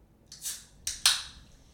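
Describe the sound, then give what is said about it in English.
Drinks being mixed: a brief hissy, splashing burst followed by two sharper, bright clinks or splashes in quick succession, each fading quickly. Fairly quiet, with no voices. “We are mixing the drinks right now.”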